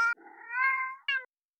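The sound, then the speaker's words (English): A cat, Mr. Teebles, lets out a drawn-out, wavering meow while eating sandalwood, bracketed by two short sharp calls at the start and end, clear with no talking. “I am sorry, my cat is misbehaving.”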